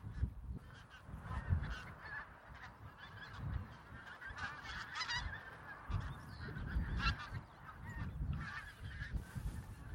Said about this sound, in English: The call of wild geese, pink-footed geese, which there are thousands here, I think, out across this marsh.